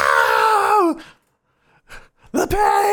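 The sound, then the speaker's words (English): A person cries out in pain: a loud, drawn-out wailing groan that falls in pitch, a pause with ragged breaths, then another anguished cry that rises and holds, strained. “Somebody's screaming about this terrible pain that they find themselves in.”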